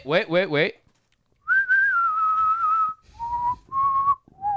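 A short warbling burst gives way to a series of clear whistled notes: one long held tone that slowly dips, then three shorter lower notes in a row, with no talking.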